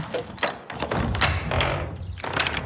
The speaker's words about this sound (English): So we've just closed the front door and put the sign out saying, sorry, no more availability to the house today because it's just gone 4.